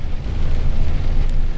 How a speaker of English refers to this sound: Yeah, we got us a little rain traffic action going on.